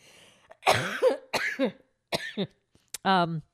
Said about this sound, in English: I have to cough. Hang on.